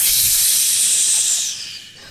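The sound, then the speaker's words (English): A hot branding iron hisses sharply in water, a loud, bright steam sizzle that holds steady for over a second and then quickly dies away. No one speaks. “It's a brand.”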